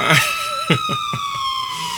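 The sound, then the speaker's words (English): A police car's siren wails steadily as the car speeds past, its pitch sliding slowly downward, with a few short knocking thumps breaking in partway through. “what she actually was recording was a police car that was flying by.”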